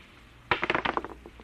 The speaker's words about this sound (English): Those dice? Clinton, do you know what the odds are against my rolling a seven? Oh, about 5 or 6 to 1. Watch.